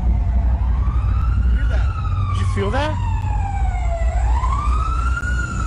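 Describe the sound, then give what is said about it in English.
A siren wails continuously, its pitch sweeping slowly down and then back up, holding steady and fairly loud throughout while a voice briefly speaks over it midway. “Okay, that sounded like a siren, right?”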